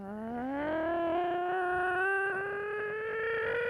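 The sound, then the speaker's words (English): A car engine drones steadily, its pitch climbing gradually as it accelerates over a few seconds, a smooth continuous hum with no voices. “Sounds like a car.”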